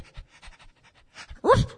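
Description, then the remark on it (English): A dog named Toby pants in quick, steady breaths while being led around punts and skiffs at a boat-hire jetty, then ends with a short, louder whining yelp. “Let's take Toby around the various punts and skiffs and see what he finds.”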